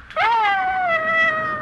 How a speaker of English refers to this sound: Stop it, Ranger. You hear? Found it. What's gotten into that dog? I'll stop it, Ranger.